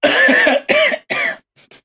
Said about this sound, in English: But he coughs.